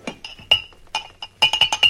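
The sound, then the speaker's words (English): Whiskey glasses clink against each other on a bar: a few scattered, bright glassy taps, then a quick flurry of ringing clinks at the end, with no talking. “Harry, two whiskeys.”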